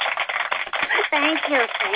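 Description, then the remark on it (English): Hands clap in a quick burst of sharp, crackly slaps for about a second, then a voice comes in, talking over a few scattered claps. “Give me a hand. Clap, you silly person.”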